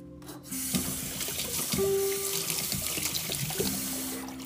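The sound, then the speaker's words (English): Coffee being poured in a steady, continuous stream for about four seconds, a splashing, hissing trickle with a faint hollow tone that shifts upward as the cup fills. No voices. “Oh, there's the coffee, the deliciousness.”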